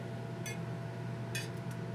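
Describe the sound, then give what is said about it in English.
Glasses of a vodka and orange drink, a hairy navel, clink together in a toast: one bright, ringing chink, then a second stronger clink followed by two quick lighter taps, all over a steady low background hum. “Well, cheers. Cheers. Let's clink it up.”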